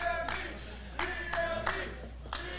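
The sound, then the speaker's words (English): Scattered audience clapping: a handful of sharp, uneven claps rather than a full round of applause, heard over a steady low hum and faint tonal background. “Clap for me, bitch.”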